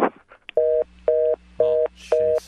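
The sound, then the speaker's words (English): A phone hang-up tone sounds after a prank call ends: a brief click, then four steady, evenly spaced electronic beeps in a quick on-off rhythm, clear with nothing else over them. “Everybody, hang up the phone.”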